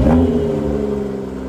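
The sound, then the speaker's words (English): A car engine revs loudly, a deep rumbling roar with a brief rising surge at the start before settling into a steady idle growl, with no voices. “That is my car.”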